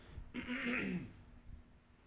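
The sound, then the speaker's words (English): A single rough throat clearing, fairly loud, lasting under a second with a raspy, gravelly texture, then quiet with a faint low thump. “Clear your throat, and say it.”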